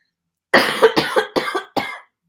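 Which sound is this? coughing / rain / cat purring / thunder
coughing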